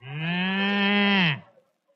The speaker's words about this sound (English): Okay. When you hear the musical cow, it will be exactly 9 o'clock, board and watch time.